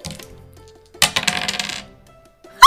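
Dice rolled in a tabletop role-playing game clatter across a tabletop in a quick, rattling burst of sharp clicks that tumbles for under a second and settles on a three, followed by a brief loud knock at the very end. No one speaks.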